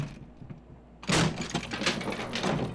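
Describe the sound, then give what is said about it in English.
A door opens after a second of near silence, with a sudden loud whoosh and rattle that continues as a rough, shuffling noise. “This was the plan? Entering a door with 50 guards?”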